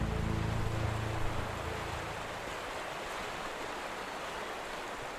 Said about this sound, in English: It's now late in the evening, and I'm lounging next to the Six Mile River